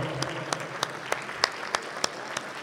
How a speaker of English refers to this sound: I see a lot of them here tonight, and I'd like everyone to give them a big round of applause.